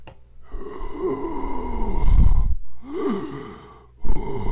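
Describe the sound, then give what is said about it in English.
A voice imitates deep, bellowing breaths: two long, rough exhales with a low rumble and breathy hiss, separated by a brief pause, and a third starting at the end. “like just deep bellowing kind of breaths.”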